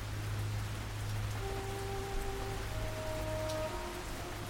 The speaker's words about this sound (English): The rain coming down in the tower was cold, man.